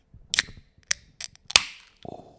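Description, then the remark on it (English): A cold fizzy lime drink can cracks open: a couple of sharp clicks at the tab, then a loud snapping pop followed by a quick, fading hiss of carbonation, with no talking. “Let me crack this puppy open.”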